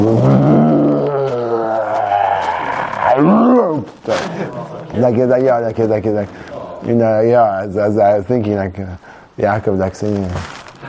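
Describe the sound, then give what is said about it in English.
A man voices a loud, drawn-out roar in imitation of a lion, rising and falling for a few seconds before breaking into a string of vocal growling sounds, forceful. “I'm doing my best lion impression and I'm inspiring zero fear inside of me.”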